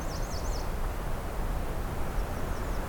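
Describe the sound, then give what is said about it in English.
A myrtle warbler's trill: a quick run of high, slurred repeated notes, then a fainter, shorter, lower trill a moment later, both over a steady background hiss. “So that myrtle warbler tends to have that trill that follows with a lower trill that's shorter.”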